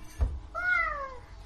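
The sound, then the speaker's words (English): A child's voice imitates a wolf howl: one short, high, slightly wavering cry that rises then slides down, sounding more like a cat's meow, after a soft thump. “What noise does a scary wolf make”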